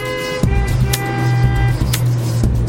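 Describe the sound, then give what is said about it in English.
Busy road traffic: a steady engine rumble with a faint tonal whine, broken by several brief, sharp bursts of noise, like vehicles jostling in congested traffic. No one speaks. “When traffic's a nightmare.”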